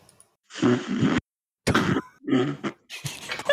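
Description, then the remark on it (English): A recorded fart that a member blasted into their microphone: four loud, raspy, sputtering bursts, the first longest, with short gaps between them and no talking. “So, that's a particular member farting into their microphone.”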